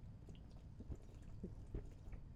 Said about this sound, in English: So I just wanted to try this with a beer. Try it. I'm going to put my neck to the microphone and see if you can hear me chug this. Let's do it.